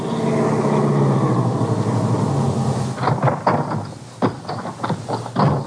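A car engine rumbles steadily as it drives up to Alva Briggs' ranch, then gives way to a series of sharp clunks and rattles, like doors opening and shutting. No one speaks.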